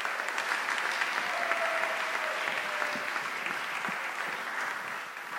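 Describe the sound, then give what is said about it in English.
A crowd claps steadily for several seconds to welcome the evening's speaker. It is a dense, even patter of many hands that holds at a constant loudness and tapers only slightly at the end. No one speaks over it. “So give him a warm round of applause.”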